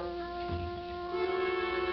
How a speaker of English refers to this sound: The courthouse clock struck the hour. The sounds went across a town that was empty. Emptier than it had ever been before. Over empty streets and empty lots and empty lawns, the sound went. 10, 11, 12.